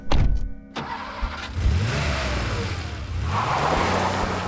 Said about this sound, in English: He grabs a couple of things from the house. He jumps in the car and speeds off.